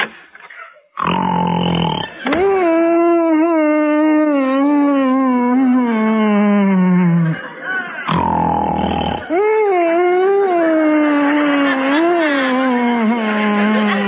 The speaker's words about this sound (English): Sounds like he left one of his goats here. Isn't that awful?